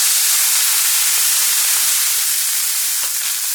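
A loud, continuous hiss of steam escaping under pressure, steady for a few seconds, with no voices or other sounds.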